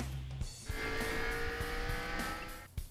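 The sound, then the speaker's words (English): A race car engine roars as it accelerates hard, a loud, sustained whine lasting about two seconds with a hint of tire squeal, then cuts off abruptly. No one speaks. “Floor it.”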